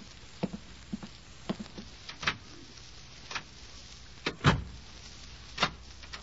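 A hospital door at Walter Reed Hospital shuts with a solid thump, surrounded by a series of sharp mechanical clicks and clacks as it is locked.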